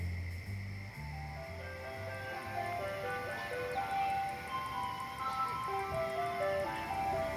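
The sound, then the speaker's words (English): An ice cream truck drives very slowly down a street just before dark, its tinkly melody playing steadily, simple repeating notes carrying over a low engine rumble and faint outdoor background noise. “A truck came into view, playing music and driving very slowly down this poor egg street.”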